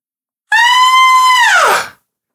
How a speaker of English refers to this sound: A woman's scream.